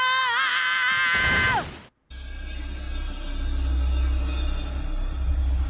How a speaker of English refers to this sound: I like how Zim's just screaming for like minutes and no one cares.